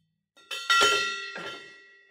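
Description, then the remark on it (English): A gong is struck about three times in quick succession, each hit ringing out with shimmering metallic overtones that linger and slowly fade. Fairly loud, with no voices. “But do I get a gong for that? Let me find my gong. Here it comes.”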